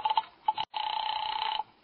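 A telephone rings with no answer: a few short electronic chirps, then a longer warbling ring tone, fairly clear and steady, with no voices.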